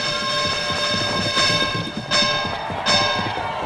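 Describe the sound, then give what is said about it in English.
A loud, steady electric bell, the third bell, rings continuously with a bright, buzzing metallic tone, with a few brief bursts of louder clatter over it and no voices. “And oh, there's third bell.”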